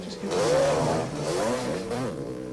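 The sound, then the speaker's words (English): A dirt bike engine in the woods revs up and down in a continuous buzzing whine, its pitch rising and falling over a couple of seconds, loud throughout. “Oh shit, no one pops a wheelie like that in an open field. Helicopter, woods, dirt bike.”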